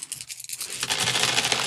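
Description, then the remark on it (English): A handful of 11 dice is rolled in a game, rattling and clattering, a few scattered clicks first, then a dense, continuous tumbling of small hard objects that keeps going to the end. “So I got 11 dice.”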